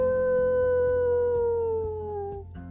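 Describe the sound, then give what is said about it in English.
A long, drawn-out wolf howl holds a steady tone that slowly slides downward, then fades near the end, heard clearly with no talking. “Then all of a sudden, she heard it again. Howl!”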